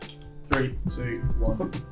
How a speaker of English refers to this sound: Oh, we've got a clap, haven't we? Oh, that was a lot of clap. Just once, I think.